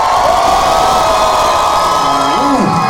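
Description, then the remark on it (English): A comedy show crowd cheers and whoops loudly and continuously when asked to make some noise, a dense wash of voices with a few rising and falling shouts standing out above the roar, no clear speech. “Hi, Astantis, make some noise.”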